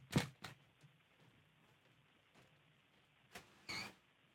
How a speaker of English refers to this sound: Just before we continue, I just need to close my office door so I can hear you better.